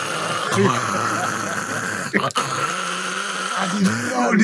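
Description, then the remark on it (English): Someone imitates the very loud snoring of a sleeper in a roof dormitory with about ten beds, using a harsh, rattling throat rasp held steady for several seconds with a short catch in the middle. “The loudest snore I've ever heard in my life.”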